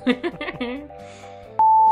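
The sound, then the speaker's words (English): A voice hums or sings softly for under a second in a wavering, wordless tune, followed by a brief pause and then a loud, steady electronic beep that holds to the end. “Humming or singing or something quietly.”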